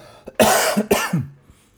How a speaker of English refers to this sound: I've got another cough coming. Sorry, guys.